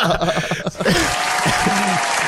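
A loud burst of canned applause swells up after a moment of voices and laughter, then sustains as dense, steady clapping for the rest of the moment, with faint talk underneath.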